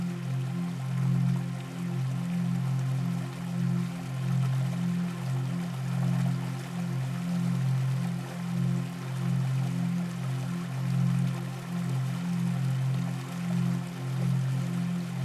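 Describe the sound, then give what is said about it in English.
Rushing river water flowing downhill through a mountain gushes steadily and loudly, a continuous churning roar with a deep, throbbing low rumble underneath and no pauses or voices. “It sounds so loud right now, the momentum forcing the water down.”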